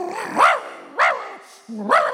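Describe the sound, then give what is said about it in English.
A small dog chasing a little girl barks three times in sharp bursts spaced about half a second apart, with a low rumbling growl leading into the final bark. “I look out, and lo and behold, there's a dog chasing her.”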